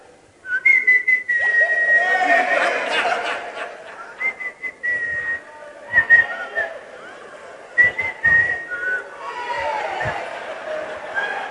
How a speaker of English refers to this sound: you think that somebody is just walking around the area, just whistling in the night